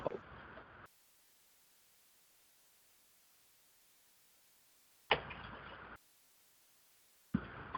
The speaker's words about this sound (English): It's raining here. Can you hear it? That's one thing bad about the Batcave. Rains. Makes a lot of background noise. Thunder.